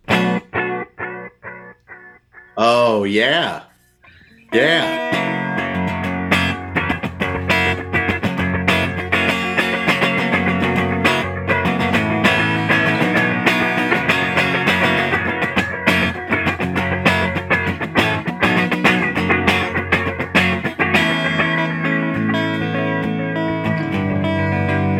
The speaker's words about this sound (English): Okay, let's move on to the Jet, which has got the flanger built in.